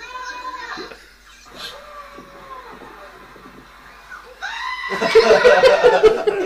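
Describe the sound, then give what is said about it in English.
Goats bleat in a series of wavering, nasal cries, some faint, then a louder, harsh burst of overlapping bleats toward the end, with no talking. “I'm telling you, goats are funny.”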